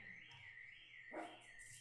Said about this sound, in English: Haha, now it's your dog's turn. My dog. The perils of having pets. What the hell?